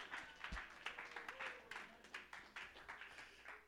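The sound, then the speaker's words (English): An audience claps their hands in praise in a steady, fairly quick rhythm, many sharp overlapping claps merging into a sustained wash of applause that continues throughout. “Oh, somebody clap your hands and magnify him.”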